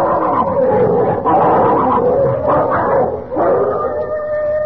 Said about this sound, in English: What's that? Oh, it's them dogs. They're fighting again. Lend a hand now, quick, before they chew each other to bits.